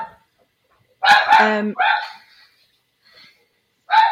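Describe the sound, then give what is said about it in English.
A dog barks three times in short, irregular bursts from another room, a quick double bark followed by a pause and one more, with no talking. “I've got my dog in the other room as well, so they could probably do a podcast together.”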